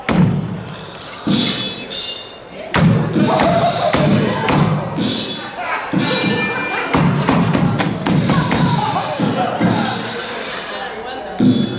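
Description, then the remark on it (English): A Slap Chop kitchen chopper is slapped down again and again, producing a string of sharp, heavy thuds at an uneven pace, with voices and chatter carrying on beneath the banging. “This isn't a very good slap job.”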